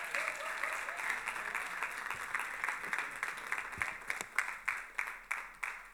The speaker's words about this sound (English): Can we give him a better round of applause?